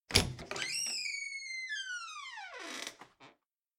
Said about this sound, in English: I took the key from the floor where he dropped it. I found the room very easily. It was at the far end of the hall. I called, Clarissa! And there was no answer. So I unlocked the door.